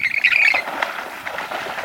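A grebe gives a loud, shrill, rattling squawk for about half a second, followed by a run of quieter, harsh chattering calls. No one speaks.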